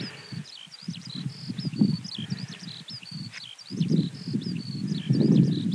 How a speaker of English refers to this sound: Here we go, skylarks.